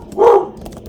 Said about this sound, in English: So there's the less fun dog barking. It's funny when, like, the pit bull dog, like, when he's at work and it's just me and the dog, I become, like, the strict aunt, where I'm like, no, I do not respond to whining, sir.